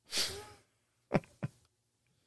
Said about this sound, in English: I have a elderly pug with a collapsed trachea, and she doesn't like to have doors closed. So she just came over and opened the door with her flat, battering ram-like pug face just to cough loudly at me while I'm recording. She's my treasure.